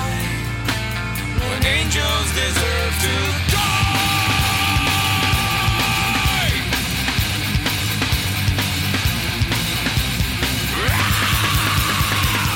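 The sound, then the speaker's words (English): A loud, dense rock song with harsh screamed vocals over pounding drums and distorted guitars; the strained, sustained shouts come in long bursts near the middle and again at the end. “I just want to hear him scream.”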